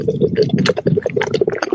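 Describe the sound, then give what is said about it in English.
Beer pours hard into an Imperial Nonic pint glass to make it cascade, a steady, dense rush of splashing and fizzing liquid with bubbly churning that stays loud and continuous throughout. “And we're going to pour it hard, and we're going to see if we can get it to cascade.”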